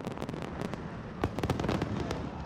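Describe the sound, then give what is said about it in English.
Fireworks light up the sky as a send-off at a festival, exploding in a rapid, irregular barrage of sharp bangs and crackles over a steady low rumble, growing denser and louder midway through, with no voices. “Cruise received a sparkling send-off as he left the festival and fireworks lit up the sky”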